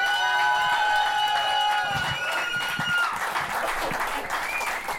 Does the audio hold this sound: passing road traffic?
no